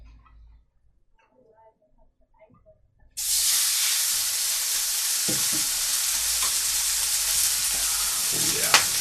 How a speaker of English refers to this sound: Nice sizzling. That's some good ASMR.